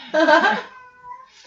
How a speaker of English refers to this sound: She's in heat if you can hear that. Yes, I have a cat named Puppy.